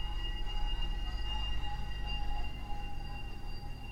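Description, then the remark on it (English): A chip shop van's jingle: a steady, shrill electronic tone much like a fire alarm, holding unbroken for several seconds over a low, constant rumble. No one speaks. “Sounds like a fire alarm. It's actually a chip van.”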